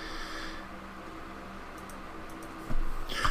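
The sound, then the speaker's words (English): Soft, irregular key clicks from a computer keyboard as someone types and looks things up, tapping along over a quiet hum, with a slightly louder knock near the end. No one speaks. “This episode is going to be full of us. Yeah, just typing and looking up things.”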